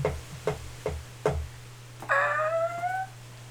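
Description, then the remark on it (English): A door opening: four evenly spaced clicks, then a drawn-out, high-pitched hinge creak that slides slightly downward for about a second, all over a low steady hum. “I just opened a door.”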